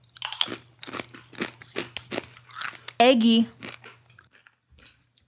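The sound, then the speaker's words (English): Loud, irregular crunches of spicy, curry-flavored potato chips being chewed, a rapid series of sharp brittle bursts, followed by a short spoken word and then quiet. “We're just sniffing chips over here. Okay, well, I want to try this really bad.”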